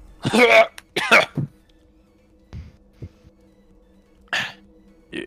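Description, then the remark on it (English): Two loud coughs in quick succession, followed by quieter throat-clearing grunts and one more sharp cough near the end, with a faint steady hum in the background. “Just cough your voice back there”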